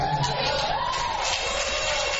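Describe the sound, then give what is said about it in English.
A crowd cheers and whoops loudly and continuously, with a few voices yelling over a dense, steady wall of noise. “We got a crowd popping on in the house right there that's going to be speaking to him.”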